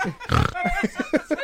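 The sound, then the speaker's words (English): A person makes a loud, nasal oink followed by a quick series of short grunting snorts, imitating a pig. “Are we having ham? Who's the pig?”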